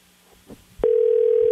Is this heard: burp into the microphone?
no